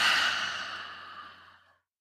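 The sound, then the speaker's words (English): A single long breathy exhale through the mouth, part of a breathing exercise following three quick sniffs through the nose, starting strong and gradually fading out over nearly two seconds, with no voices. “Three quick sniffs and a long exhale.”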